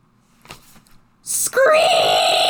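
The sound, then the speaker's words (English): After a quiet moment and a short breathy hiss, a voice imitates screeching speaker feedback with a loud, shrill, sustained squeal that slides upward and holds steady to the end. “the speaker over her head bleated out 5 seconds of screeching feedback”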